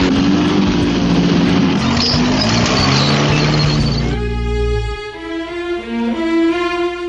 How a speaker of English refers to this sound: Then one day, it seems, while the plain-bellied sneetches were moping and doping alone on the beaches, just sitting there wishing their bellies had stars, a stranger approached in the strangest of cars.